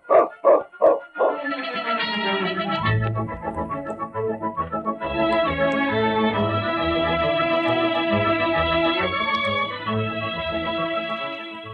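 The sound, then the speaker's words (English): A dog gives four quick, loud barks, then breaks into a long, wavering howl that carries on steadily for several seconds with no one speaking. “We'd have done it, too, if I'd known about that dog.”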